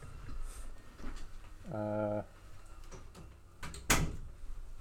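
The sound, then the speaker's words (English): A door swings with a brief creaking squeal, then closes with a single sharp thud near the end, against a low background murmur. “I had to close the door.”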